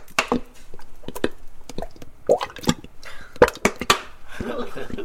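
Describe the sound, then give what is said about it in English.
Peppers are poured into a big saucepan in an uneven clatter of sharp taps and thuds, bunched into quick bursts with short pauses between them, with a soft wet squish underneath. “Pour in all the peppers.”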